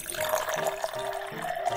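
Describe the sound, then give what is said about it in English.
Tap water runs steadily into a metal pot in a kitchen, one of three pots being filled with water, a continuous rushing pour with a ringing hollow tone from the filling vessel, heard alone without any talking. “They walked into the kitchen and Dad took out three pots from the kitchen drawer and filled them up with water.”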